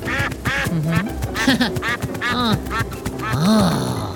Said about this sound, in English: Here comes a gaggle of ducks.